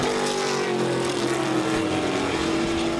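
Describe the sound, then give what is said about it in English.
Historic 1966–72 Trans Am race cars, with a Javelin and a Mustang battling on the final lap at Laguna Seca raceway, roar past with loud, sustained engine snarls, their pitch easing slightly downward as they go by, with a steady rumble throughout and no voices. “And a battle is on between Epsman and Lawler on this final lap between the Javelin and the Mustang.”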